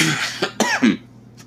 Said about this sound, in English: sorry, this cough still hasn't quite left my lungs.